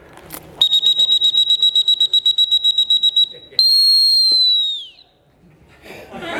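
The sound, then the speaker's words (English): A dog training whistle sounds loud in a rapid string of about fifteen short, high blasts, then one longer sustained blast that sags in pitch as it ends, blown as a signal to come running to the whistler. “When I blow my whistle like this, beep, beep, beep, beep, beep, beep, beep, beep, beep, and I go like this.”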